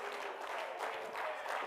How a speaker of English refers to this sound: Oh, clap your hands and praise Him tonight.